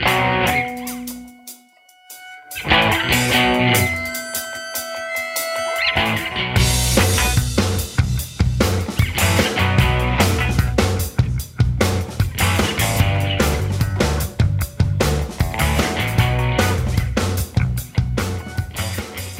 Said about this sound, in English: Like you get that distortion from the guitar, you get the drums come in, and you're like, ooh. It does swing a lot more to the rock side.